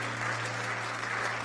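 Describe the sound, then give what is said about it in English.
A church audience claps steadily for the music ministry, a dense, even wash of many hands applauding at a constant loudness with no pauses, accompanied by a faint low hum beneath. “Let's give this music ministry a hand praise for all the work and all the commitment.”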